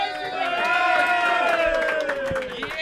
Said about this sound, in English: please cheer loudly for the guy who's yelling in front of you.